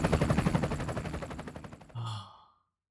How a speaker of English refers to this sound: I was wondering what all that gunfire was.